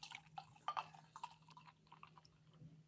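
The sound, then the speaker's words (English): Thick beer pouring, with soft irregular glugs and splashes over a few seconds, fairly quiet, above a steady low hum. “This pours like oil, by the way.”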